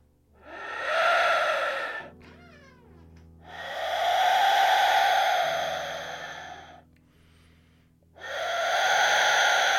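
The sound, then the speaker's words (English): An Aztec death whistle blown softly three times in long, breathy, wheezing bursts, a hoarse, airy rush with a faint shrill edge. Thin creaking squeaks from a squeaky chair and a low hum fill the pauses between blows. “Let's see if we can get the squeaky chair and the Aztec death whistle going together.”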